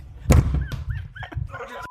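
A single loud, boomy thud as a face knocks hard against a microphone, followed by muffled bumping and brief squeaky vocal sounds.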